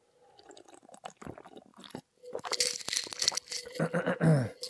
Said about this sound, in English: I did say that I'm going to reward myself with a little sip of water.